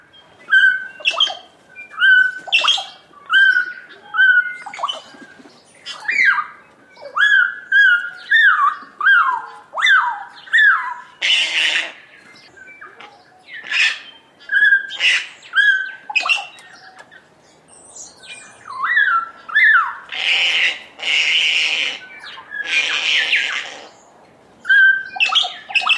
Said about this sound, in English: At a bird feeding station, we listen to the sounds of kakas, bellbirds, and other species.